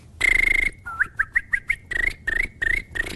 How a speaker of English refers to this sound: For example, I've developed all these funky techniques as the regular lip whistle, but I can also whistle with my tongue and then go.